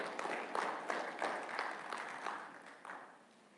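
Steady applause from an audience welcoming a third grade teacher as she comes up, a dense patter of many hands clapping at moderate volume before gradually thinning and fading toward the end.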